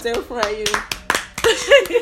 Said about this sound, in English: Oh my gosh, clap for me.